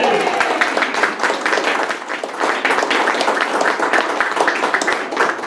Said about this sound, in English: So, one cheer for Beth. Ready? Hooray! Hooray!